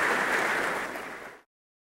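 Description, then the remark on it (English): An audience applauds Speckle in a steady, dense patter of clapping that holds at an even level for about a second and a half, then cuts off abruptly into silence. “Let's give a round of applause to Speckle.”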